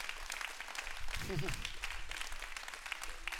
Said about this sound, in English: How many of you would be willing to stand with me right here in this service and say, God has been good to me? Don't clap for me, clap for him. He's been good to me, man.